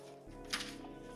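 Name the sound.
paper rustling being handled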